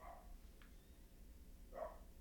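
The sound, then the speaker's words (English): A dog barks twice, faint and muffled, with a pause of over a second between the two barks over a low background rumble. “It might be the neighbor's Kennedy's dog.”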